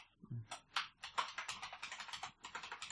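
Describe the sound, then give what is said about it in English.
Rapid, irregular clicking of keys on a computer keyboard as someone types to log in to an email account, clear, a steady flurry of taps filling the whole moment with no voices. “What are you typing? Gmail.”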